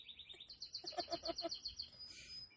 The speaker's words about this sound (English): Music is brought to you by the birds. Los pajaritos del vecindad. Yeah. They're my dad's birds. That one especially, that one... It's like this whole time, estaban bien calmados, and now bien they're like, oh, you're recording cute.